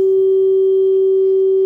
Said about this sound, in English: I'm glad I'm playing a tuning fork